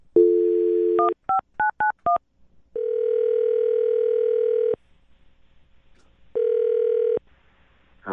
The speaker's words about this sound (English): All right, I'm going to dial the phone right now, get him on the phone, okay?